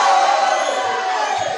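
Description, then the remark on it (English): A church audience, standing up, shouting together, a dense, steady roar of many voices that stays loud and unbroken for the whole moment, with no single voice standing out. “People are standing up and they are shouting like that.”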